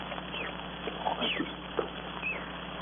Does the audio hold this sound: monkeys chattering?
yes